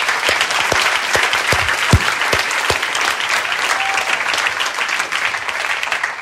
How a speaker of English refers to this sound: And the weird part about this is that you just clap for yourselves. Because the vast majority of you are those people right there.